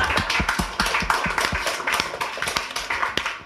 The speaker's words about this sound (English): I think that's one of the best stories we've had. Round of applause, man.